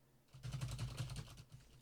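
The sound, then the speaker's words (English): A quick burst of typing on a computer keyboard while writing a script, with rapid, fairly even key clicks lasting over a second above a faint low hum. “Oh, you've got that enchanted keyboard.”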